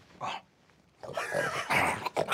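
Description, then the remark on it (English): A wolf growls and snarls while eating a sandwich: a short rough sound, a pause, then a louder, sustained stretch of growling with wet, chomping noises and no talking. “I've never seen a wolf eat a sandwich.”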